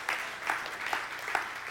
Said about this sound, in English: And in 2015, last year, 95 households or individuals made faith promise commitments. And why is that important? You can clap for that. Absolutely. Yeah.